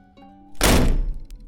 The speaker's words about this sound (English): I awoke to the door being flung open by the doctor.